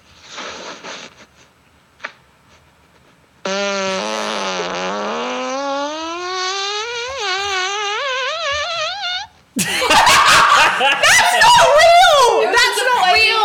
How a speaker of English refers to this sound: Best fart you got. Okay. And put it right to the mic.